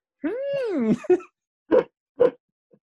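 A dog whimpers, the whimper of the movie character Chamberlain, with one high, wavering whine that rises and falls, then gives a couple of short, sharp yelping bursts. Fairly loud, with no talking around it.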